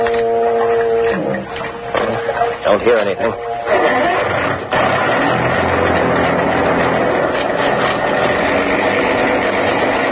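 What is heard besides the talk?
foghorn blowing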